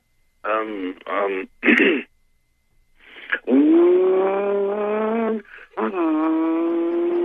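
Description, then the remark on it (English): A voice imitates a rumbling Chevy car engine: a few short revving bursts, then two long, steady droning rumbles that rise in pitch and hold, like a car at a stoplight picking up speed and pulling away. “Give me that nice rumbling Chevy.”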